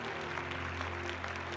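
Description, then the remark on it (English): A large audience gives a standing ovation after an orchestra's concert, clapping in a dense, sustained roar of applause that holds steady throughout, with a faint low hum underneath and no voices standing out. “When they played their last note, the audience gave them a standing ovation, which turned into 12 curtain calls. They just would not stop clapping.”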